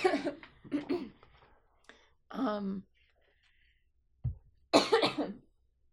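A person coughs several times in close succession, a few sharp, harsh bursts separated by short pauses, then one last heavy cough after a brief silence, fairly loud.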